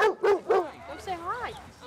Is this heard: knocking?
no